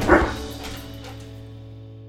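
A dog lets out a single short, sharp bark at the very start, followed by a quiet steady low hum with no further barking.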